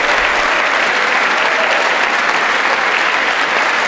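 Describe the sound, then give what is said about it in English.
Sustained applause from a large crowd filling a room, applauding a suggestion made in a speech: a dense, steady wash of many hands clapping at once with no pauses, loud throughout. “And there's a room full of idiots like applauding this.”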